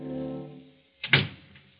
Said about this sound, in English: Janet closes the door and steps into the room.